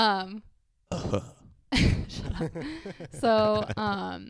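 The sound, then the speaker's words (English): A person clears their throat into a microphone with a rough, gravelly burst partway through, surrounded by short voiced vocal sounds and hums, with a brief silence early on. “sorry, keep clearing my throat into the mic.”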